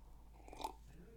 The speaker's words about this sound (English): Let me take a sip of this water.